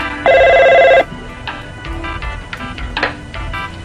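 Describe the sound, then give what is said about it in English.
A single loud, steady telephone ring lasting under a second as someone calls a phone line, followed by quieter scattered electronic tones and faint noises on the line. No one speaks. “Goes to use the phone. He's calling 976 Skag.”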